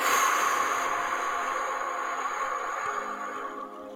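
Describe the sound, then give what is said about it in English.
A long, steady breath drawn in, a soft airy hiss that holds for several seconds before easing off at the end, with no talking; a deep inhale and exhale during a breathing exercise, breathing in for a count of five. “Whatever you're doing now, I want you to inhale for a count of five. Ready? And exhale.”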